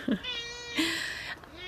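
A cat, Kitten, meows, a drawn-out call followed immediately by a louder, higher, strained meow, with no talking over it.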